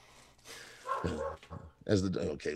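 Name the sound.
dogs barking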